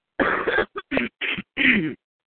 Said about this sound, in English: I hear you clear your throat. I thought you had something to say.